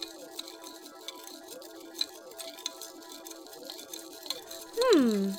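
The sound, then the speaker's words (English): A spoon stirs a drink made from pellets and water in a glass, making soft, irregular clinks and light rattling throughout, fairly quiet, before a short, louder descending tone cuts in at the very end. “And stir.”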